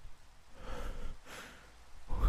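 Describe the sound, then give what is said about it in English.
Heavy, ragged breathing from a woman who pauses and begins breathing heavily, two or three long breaths in and out with a raspy, gasping edge, alone without any talking. “D680 pauses and begins breathing heavily.”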